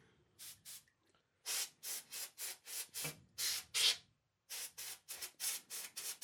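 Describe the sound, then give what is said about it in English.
Rapid bursts of canned air from a spray can hissing as someone dusts a keyboard: about a dozen and a half short sprays in two quick runs separated by a brief pause, with no talking. “My board's all dusty. Do we need to get that spray can?”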